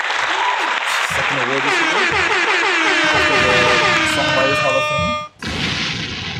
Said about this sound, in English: Let me give her a round of applause once again.